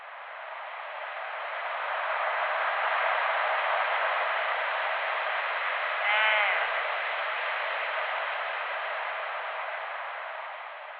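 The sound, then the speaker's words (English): A single brief bighorn sheep bleat, nasal and wavering, rises once midway through a steady wash of hissy, radio-like static that fills the whole recording. “In our earlier conversation, I played what is probably a bleat of a bighorn sheep.”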